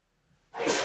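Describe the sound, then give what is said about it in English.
A man sneezes once: after a brief quiet stretch, a sudden loud, breathy burst of noise erupts and holds to the end, with no talking. “that man sneezing in the background is my brother”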